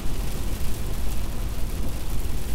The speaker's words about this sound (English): Wow, I don't know if the recorder could hear it or not, but the rain is coming down.